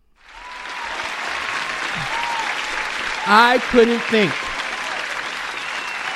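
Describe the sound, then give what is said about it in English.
Steady, dense applause from a sizable crowd, loud and continuous throughout, with a brief vocal shout or whoop rising out of the clapping midway. “You're homeless and $2 million in debt? Applaud that.”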